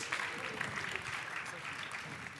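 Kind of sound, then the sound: crowd, audience clapping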